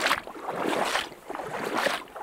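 Someone wading through a stream, with water sloshing and splashing in rhythmic surges about once a second, loud and hissy over a steady watery rush. No one speaks.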